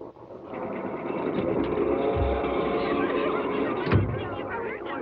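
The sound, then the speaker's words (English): A steady rumble of a night train bound for Boston rolling along the tracks, heard from a sleeping berth, with a dull low thump partway through and another near the end, and faint murmuring voices underneath. “On the night train bound for Boston, the unsuspecting Stella lies awake in a lower berth, listening to Laurel stirring restlessly above.”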